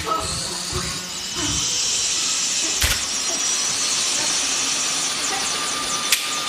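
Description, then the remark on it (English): A helicopter lifts off over the Carolina countryside: a loud, steady turbine whine and rushing hiss swell up after a moment and hold at full power, with a few sharp clanks over the roar. “Get in the helicopter!”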